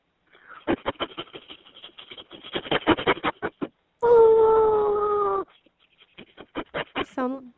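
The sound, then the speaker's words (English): A dog lets out a loud, sustained howl lasting over a second, its pitch sliding slightly downward, framed before and after by bursts of rapid, choppy yapping. “Satan's dog. Sounded kind of like a train.”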